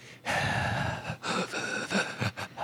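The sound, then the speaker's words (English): A narrator imitates heavy, ragged breathing, a run of loud gasping inhales and exhales in uneven bursts with brief pauses between them, no words spoken. “He is breathing heavily, and when he turns around, his eyes are blanched white.”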